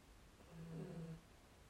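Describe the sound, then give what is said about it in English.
A small dog gives one soft, low snore at night, a brief nasal rumble lasting under a second, faint against quiet background noise with no talking. “Again, you probably heard my little one snoring. My little dog snoring, so it's night time for us.”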